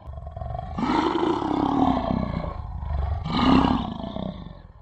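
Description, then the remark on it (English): An animal named Shiva growls twice in the distance: two deep, rumbling roars, the first drawn out for over a second and the second shorter and louder, with a low throaty rasp and no voices. “Shiva growls in the distance.”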